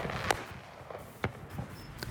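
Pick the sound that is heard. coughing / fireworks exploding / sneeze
fireworks exploding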